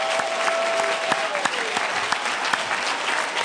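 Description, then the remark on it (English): An audience claps hands together to God in dense, sustained applause, with sharp individual claps popping out of the steady wash of sound and a faint sustained tone running underneath. “Clap your hands with me to him.”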